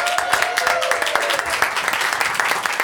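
A crowd applauds steadily, dense overlapping claps at an even level throughout, with a faint voice or cheer briefly rising above the clapping early on.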